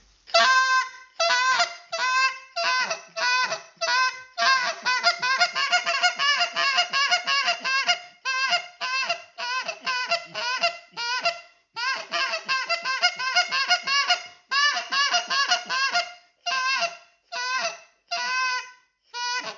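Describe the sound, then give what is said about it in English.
A goose call blows a spit moan that breaks into a hiccup, sped up into a fast, rapid-fire run of hiccuping clucks, loud, with short pauses between bursts and no talking; a finishing call to bring geese in to land. “you want to get them to just to cream over their toes and lay the feet right down in front of you, we can add a little that spit moan into a hiccup, which we're gonna speed that up, and then you'll hear that.”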